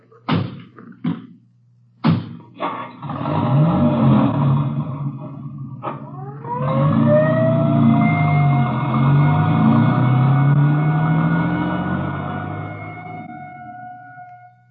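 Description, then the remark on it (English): A few sharp door thumps and an engine rumble, then an ambulance siren winds up and wails steadily as the vehicle drives off, fading slightly toward the end. No one speaks. “I'll ride back in the ambulance with the girl.”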